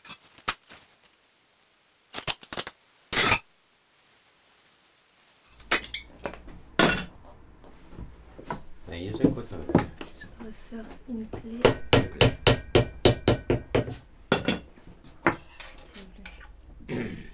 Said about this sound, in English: Only high-pitched hammering and the key being cut remain.